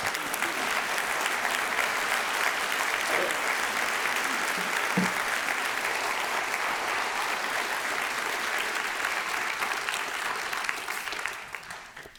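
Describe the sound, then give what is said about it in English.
Sustained applause from an audience, a dense steady wash of many hands clapping at even loudness for about eleven seconds before tapering off at the end. “We don't clap usually.”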